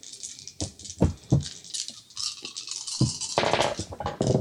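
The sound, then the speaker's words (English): A player rolls a large handful of dice for an investigation check: the dice rattle and clatter together, with several sharp clicks and then a sustained, dense rolling clatter that grows busier toward the end. “He rolled so many dice just then.”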